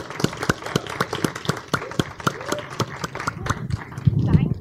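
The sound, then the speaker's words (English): An audience breaks into applause for a speaker, a brisk run of sharp, crisp claps carrying on steadily for several seconds, with faint voices and murmurs rising underneath toward the end. “Can I get a massive round of applause”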